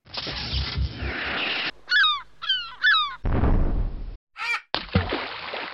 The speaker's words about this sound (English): Did that man just shoot down a seagull? No, love. Well, not on purpose. He was just practicing.